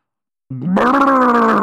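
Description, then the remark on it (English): A voice imitates an old sea lion's roar, "Brrrr!": after a brief pause, a loud, rumbling growl rises and holds steady for about a second, rough and strongly voiced. “"Brrrr!" roared the sea lion, shaking his whiskers from side to side.”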